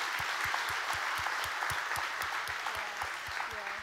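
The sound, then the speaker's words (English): Sustained audience applause, many hands clapping steadily and densely, with a faint voice murmuring underneath toward the end. “So can we give our staff, the tech team, the serve team, the volunteers, everybody a great big hand clap.”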